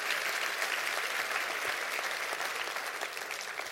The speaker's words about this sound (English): Clap your hands and receive that right now.